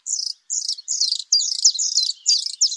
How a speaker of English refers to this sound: It's a beautiful male blue throat, his vivid azure throat and upper breast rimmed with rust. The song presses on and on. Spring has come to the Arctic.